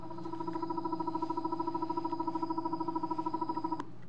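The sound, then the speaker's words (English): A tawny frogmouth's drumming mating call: a steady, rapid string of low, humming pulses, roughly eight or nine a second, running evenly for several seconds with no voices. “They also vocalize this loud drumming sound during mating. Here's a small clip of that.”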